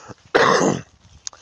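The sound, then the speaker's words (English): A single harsh cough bursts out loudly for about half a second, with a rough throat-clearing quality, followed by quiet breathing and a faint click. “sorry, been coughing a lot.”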